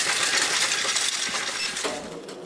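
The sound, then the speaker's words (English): A steady metallic cascade of coins pours into a counting machine, a dense, bright jingling and clattering that holds loud and continuous for a couple of seconds, with no voices. “So we're going to toss them into the machine here and begin the counting process.”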